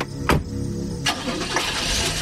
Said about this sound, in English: The smile faded, covering the jagged teeth, and he nodded to me just once before getting in his car and driving away.